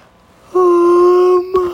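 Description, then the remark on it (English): A single drawn-out yawn from a tired person, with a steady, voiced moaning tone held for about a second, catching briefly near the end. Fairly loud, with no talking. “sorry I'm yawning.”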